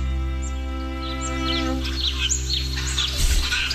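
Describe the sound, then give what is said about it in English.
A titmouse calls with a scatter of quick, high chirps and whistles over a steady low droning hum, with a soft thump near the end and no one speaking. “Titmouse.”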